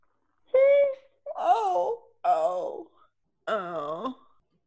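A person lets out a big, drawn-out yawn in several loud, groaning vocal bursts, each rising and falling in pitch, with short pauses between them.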